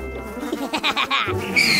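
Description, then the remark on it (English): A horse whinnies loudly, a shrill, quavering call that breaks into a quick series of trembling pulses before trailing off into a breathy snort. “Ooh, horses!”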